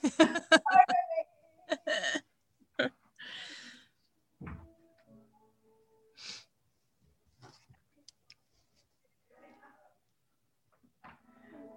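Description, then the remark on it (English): A door is opened to let a dog in: a few scattered knocks and a dull thump, a short rustle, then quiet stretches with faint movement, and some indistinct vocal sounds early on. “There's a dog at my door that I just need to go nail it.”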